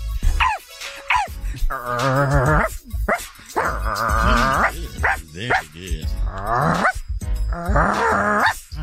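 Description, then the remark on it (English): A person's voice imitates a dog, giving a series of loud barks and yelping howls in rhythmic bursts, with brief growly breaths between them. “Do a dog”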